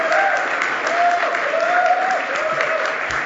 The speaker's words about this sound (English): So feel free to applaud as I introduce each guest. Beginning with the Honorable Michael Chong, current MP for Wellington Halton Hills.